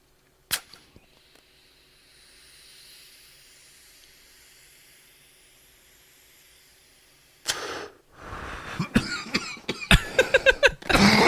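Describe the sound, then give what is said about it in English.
After a long stretch of quiet hiss, a man breaks into a run of harsh, raspy coughs, several in close succession, loud. “I mean, really, when he's coughing, there is pretty good.”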